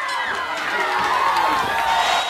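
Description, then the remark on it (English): A World Championship Wrestling crowd screams and cheers in a dense, continuous roar, high-pitched shrieks rising over the steady wall of noise, loud throughout with no pauses. “So, a lot of screaming going on there, wasn't it?”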